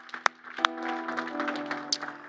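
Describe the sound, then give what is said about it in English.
An audience at a church service gives God a clap of praise, a busy patter of hand claps with a few sharper, louder slaps standing out, over steady sustained keyboard or organ tones. “Come on, if you're grateful for the sealing of the Holy Spirit, can we just give God a clap of praise today?”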